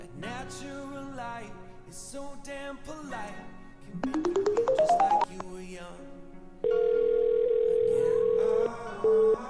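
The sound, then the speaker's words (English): A phone rings with an incoming call, a quick rising electronic melody, followed by a long steady tone that cuts off briefly and resumes. Muffled voices are heard faintly at the start. “Oh, I'm getting a phone call.”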